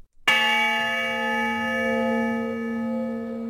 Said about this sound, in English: And indeed, the honor bell did toll for Lewis Oliveira.